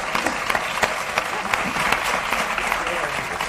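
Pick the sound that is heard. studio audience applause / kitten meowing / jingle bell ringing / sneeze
studio audience applause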